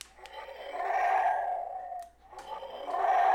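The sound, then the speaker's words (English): A voice imitates an old man snoring with two long, rasping, breathy snores, the first about two seconds and the second starting after a brief pause, both fairly loud with a throaty midrange rattle. “It is snoring creatures.”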